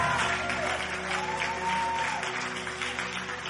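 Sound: audience clapping and applauding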